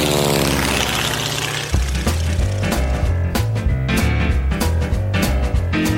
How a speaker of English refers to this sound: He put up too many Christmas lights. You know how I can tell? Because airplanes keep trying to land in his yard. It's getting very annoying, folks. Let me tell you, it wakes me up in the middle of the night.